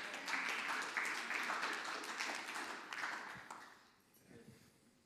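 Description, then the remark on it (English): An audience applauds in a steady, dense burst of clapping that holds for several seconds, then thins out and fades away near the end. “You guys clapped, and I lost my train of thought.”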